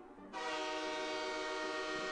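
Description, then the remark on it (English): A loud train horn blasts in suddenly after a brief low rumble and holds one sustained, harmonic-rich tone to the end, steady with no voices. “That wide receiver train. It's the biggest train ever.”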